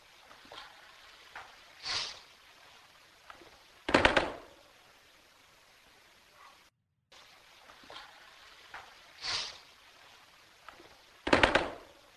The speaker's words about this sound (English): Sounded like gunfire to me.